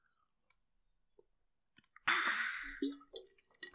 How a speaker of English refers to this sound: I am recording as well, but I'm going to take a sip of water first.